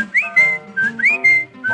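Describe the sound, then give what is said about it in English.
Bright whistled chirps imitating a bird call, two quick rising phrases with sustained notes, clear over a soft, steady musical backing. “A Dickie Bird whistled, haven't you heard?”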